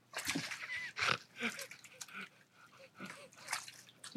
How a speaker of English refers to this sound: Here we go. He's having a nice splash about now. Ooh, slippy that. He's going to need a rubber mat.